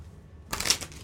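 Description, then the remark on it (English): A short burst of crisp, riffling paper noise of playing cards being shuffled, lasting about half a second after a quiet start, with no talking. “Well, I can't shuffle it like that.”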